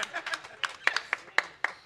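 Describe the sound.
A small audience at a quiz claps for a contestant in a brief, uneven burst, a handful of sharp hand claps landing irregularly over about two seconds, moderately quiet with a faint murmur of voices underneath.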